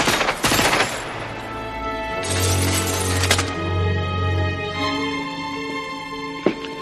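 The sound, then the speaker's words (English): Loud bursts of breaking, shattering glass crash out twice over a dramatic musical score, with a low rumbling tone underneath and one sharp hit near the end, as a man shot in the legs crashes through the glass. No one speaks. “And he shoots him in the legs, crashes through the glass, and then he's just down.”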